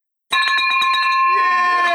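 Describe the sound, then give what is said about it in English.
A victory bell is rung vigorously in an office to mark $300,000 for the year so far: about nine rapid, bright metallic clangs, then a loud, high ringing tone lingers as someone starts talking underneath it. “Victory bell, $300,000 for the year so far.”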